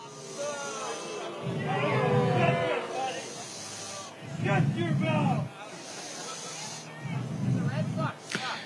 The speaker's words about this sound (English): There, he took questions from the crowd, including from someone who asked him, why did you commit treason on January 6th? This clip starts with folks booing the man who asked the question.